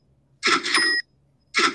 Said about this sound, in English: That's three cash registers, folks.